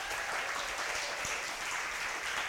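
An audience applauds, steady dense clapping from many hands forming a continuous crackling wash at an even, moderate loudness throughout.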